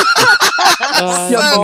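A goose honks loudly, a quick run of five or six harsh squawks followed by one longer, drawn-out nasal honk, with no talking.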